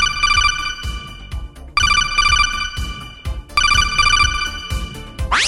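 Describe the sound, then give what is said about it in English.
A telephone rings three times in bright, evenly spaced electronic trills, loud, over a steady thumping beat that carries on between the rings. “All right, look, let's go to the phones.”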